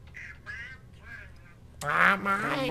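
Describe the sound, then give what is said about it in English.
A voice imitates Donald Duck, first with several short, raspy quacking bursts, then a louder, longer squawking stretch, with no other sounds. “You can't do Donald Duck.”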